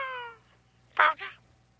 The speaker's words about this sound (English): Who is this, the cat?